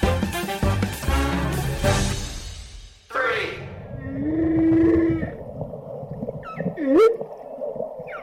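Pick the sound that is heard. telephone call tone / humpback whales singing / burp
humpback whales singing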